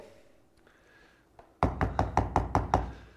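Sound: knocking on a door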